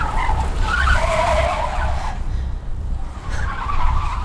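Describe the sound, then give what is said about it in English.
Tires screech loudly as a driver swerves to avoid rear-ending the car in front, a long squeal that fades briefly before another sharp skid returns, over a low engine rumble. “While mom was acting all tough, she almost rear-ended a car in front of her. Had to swerve out of the way.”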